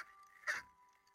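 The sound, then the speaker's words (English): A single short bark from a neighbour's dog outside in the back garden while the neighbour plays with it, muffled, rising briefly over a quiet background hum. “A barking from outside drew me to the window which overlooked the back garden.”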